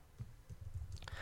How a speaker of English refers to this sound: Checking. Typing.